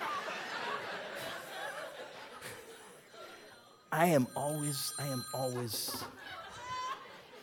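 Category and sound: signal or alarm, mobile phone ringing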